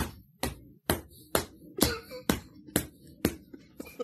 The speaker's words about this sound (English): Here's her punching him in the face. Here come the stomps.